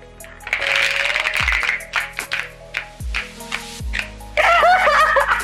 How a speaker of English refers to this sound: I love slowing down the shuffle because it's like such a cool sound. It really vibrates my auras.